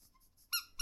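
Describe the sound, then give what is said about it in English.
A squeaky toy is squeezed right beside the microphone, giving two loud, shrill, close-up squeaks, the second shorter, after a moment of faint quiet. “Oh, don't squeak it right down the microphone.”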